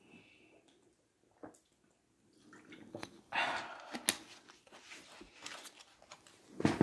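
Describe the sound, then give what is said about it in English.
Someone takes several wet gulps of alkaline water, with soft swallowing and sloshing sounds coming in irregular bursts and no talking. “Forgive me that goddamn alkaline water, good.”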